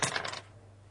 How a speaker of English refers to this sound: Okay, let's try. Toss those dice.